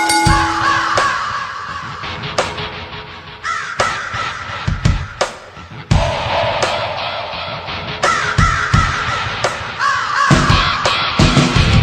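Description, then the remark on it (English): Loud, harsh raven caws ring out again and again over a driving theme music track, each croak punching through the steady instrumental backing. “I love that theme. Raven.”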